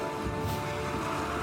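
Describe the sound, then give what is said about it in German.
Muffled water lapping against the bow of a ship, heard from the cargo hold, a steady low wash of sloshing sound that seems distant and continuous, with no voices present. “Ihr hört entfernt das dumpfe Plätschern des Wassers am Bug des Schiffes.”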